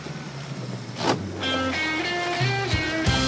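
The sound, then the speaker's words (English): An 18-foot flat-bottomed John boat is backed into the water at Pohick Bay Regional Park in early spring, with a steady engine drone, watery rumble and a few sharp clunks. No one speaks. “John is backing an 18-foot John boat into the water at Pohick Bay Regional Park”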